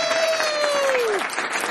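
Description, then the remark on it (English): Dense, steady applause from the studio audience of the show ETL News fills the whole moment, with a bright sliding tone, like a whistle or whoop, gliding downward over the clapping before it cuts off. “I gotta wait for the applause to die”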